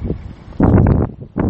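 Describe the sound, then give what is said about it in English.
Wind gusts buffet the microphone outdoors at a park, making loud, low rumbling bursts that swell and drop in uneven waves, with a brief lull in between and no voices. “It's a little bit windy out here, but it's all good.”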